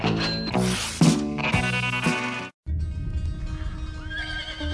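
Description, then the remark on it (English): A horse whinnies loudly, its shrill neigh rising and falling, followed after a brief pause by another long neigh over steady clip-clopping hoofbeats. “Sometimes you can tell a lot about a horse by what it's named.”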